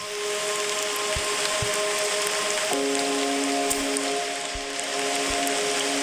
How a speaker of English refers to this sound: Hold on. This one's called Forest Rain.